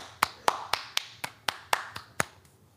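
Applause from what sounds like a single pair of hands: about nine sharp, evenly spaced claps in a steady quick rhythm, fairly loud and crisp, with no talking underneath.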